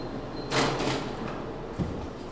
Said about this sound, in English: the Time Service Department is locked up pretty tight. Now we're entering through one double locked door.